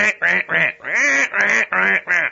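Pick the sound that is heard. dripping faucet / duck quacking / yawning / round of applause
duck quacking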